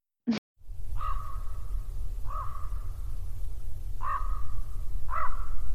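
A raven caws four times, each call harsh and drawn out, spaced unevenly over a steady low rumble like wind, with a brief sharp knock just before the first call.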